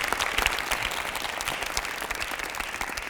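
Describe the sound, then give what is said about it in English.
A crowd claps steadily throughout for the director, literary executor and dramaturg of a production of Les Blancs at the National Theatre, a dense wash of many hands with sharp individual claps popping out. The applause holds fairly even in loudness for the whole stretch, with no voices. “So a big round of applause to all three of them today.”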